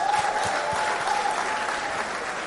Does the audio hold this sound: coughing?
no